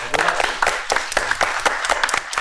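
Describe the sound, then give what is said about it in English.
A crowd claps steadily, many hands producing a dense, crackling patter of sharp bursts at a fairly loud, even level with no voices over it. “Clap it up.”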